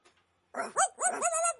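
A few dogs bark and yelp in quick succession, fairly loud, with high, whiny tones to the barks and no talking.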